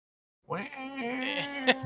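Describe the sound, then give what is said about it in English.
A person's voice imitates Godzilla's roar: one loud, drawn-out cry, strained and wavering, with a bleating quality that swells toward the end. “We need that sound effect of Godzilla roaring.”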